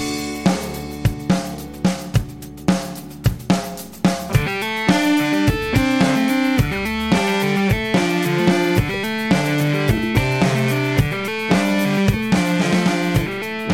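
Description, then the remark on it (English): A rapid, syncopated melody of bright distorted notes played by guitar finger tapping, with little synth oozes, rides over steady drum hits; the music swells louder after a few seconds and nobody speaks. “Yeah, that's the finger tapping there.”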